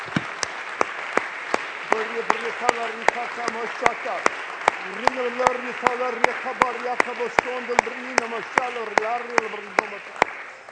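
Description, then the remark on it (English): An audience claps its hands to the Lord in a steady, even beat, sharp claps repeating roughly twice a second, while several voices rise and fall underneath. “Somebody clap your hands to the Lord and thank him for this word he's given to us.”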